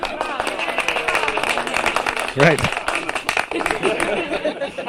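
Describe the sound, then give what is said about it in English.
A burst of canned crowd laughter mixed with scattered clapping, played as a soundboard effect, runs steadily for several seconds, with a single spoken word cutting in partway through. “The same people laugh and clap the same way always.”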